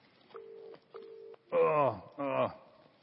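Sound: phone number being dialed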